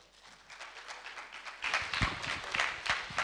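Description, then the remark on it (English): A church audience applauds as a man is invited to the stage, a dense wash of many hands clapping that starts moderate and swells louder and fuller about halfway through, continuing steadily to the end with no voices. “You want to give him a round of applause.”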